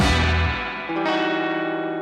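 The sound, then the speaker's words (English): The new opening jingle of The Robert Scott Bell Show: bright, heavily processed bell-like tones with echo and distortion, a new chord swelling in midway and ringing out loudly, with no voices. “That was a nice new opening there.”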